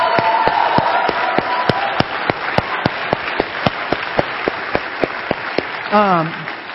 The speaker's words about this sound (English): Okay, you guys stand up. Hold on. Stay standing. I want us to give him a better applause than that.